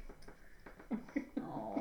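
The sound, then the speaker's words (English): A dog named Teddy, a female, whimpers and fusses, giving four or five short, soft whiny yelps in quick succession over faint rustling, with no one talking. “I'm getting loved by my dog.”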